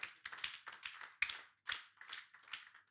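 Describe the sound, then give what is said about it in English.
A group claps together as an offering to the Lord in a steady rhythm, about two or three claps per second, the bursts fairly soft and slightly ragged, with no voices over them. “Can I hear you give the Lord a clap, offering?”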